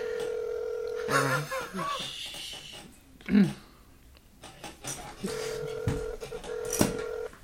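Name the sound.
telephone keypad dialing tones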